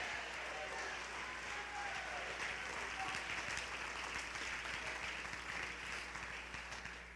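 audience clapping and shouting

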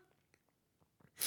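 sneeze

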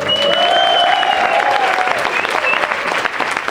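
audience applause

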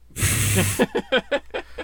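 nose blowing

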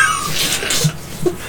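cat yowling

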